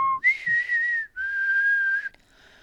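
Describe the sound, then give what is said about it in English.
A person whistles a short two-part signal tune, the Saviors' whistle, a rising held note followed by a second long steady tone, clear with no talking. “And she knew he was a savior because he did the whistle.”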